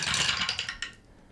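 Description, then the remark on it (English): A dense burst of hard, rapid clattering as eight six-sided dice (d6s) tumble down a dice tower, loud for most of a second before a last click or two and a quick fade. “I mean, I could throw it down the tower.”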